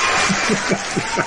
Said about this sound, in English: I love the applause.